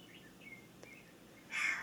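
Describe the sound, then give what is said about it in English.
A northern saw-whet owl call: faint, thin whistled notes followed by a sudden louder, high-pitched, raspy squeal near the end, heard alone without talking. “Okay, I'm gonna say the northern saw-whet owl.”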